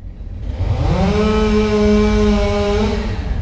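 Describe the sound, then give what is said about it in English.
A chainsaw revs up, its buzzing motor climbing in pitch, then holding a loud, steady drone for a few seconds before easing slightly, with no talking. “Because he was a broken man who chipped and cut people up with a chainsaw.”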